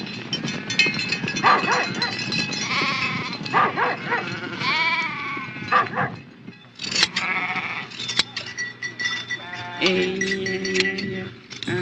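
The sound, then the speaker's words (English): A flock of sheep bleating continuously, many wavering calls overlapping, some higher and some lower, with barely a pause across the whole stretch. “And instead of forgetting the sheep, you stand by them with your teeth chattering.”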